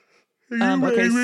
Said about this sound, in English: Don't make me yawn.